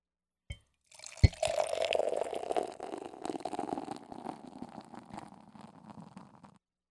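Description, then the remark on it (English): A crack and a sharp click, then beer pours steadily into a glass for about five seconds, a gurgling, fizzing stream that tapers off at the end; the beer has a golden honey color. No one speaks. “Let's go ahead and get this fucking pour going.”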